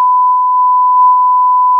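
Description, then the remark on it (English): A single loud censor bleep over swearing: one steady, high-pitched tone holding unbroken for nearly two seconds, clean, with no voices audible beneath it. “Beep, beep, beep.”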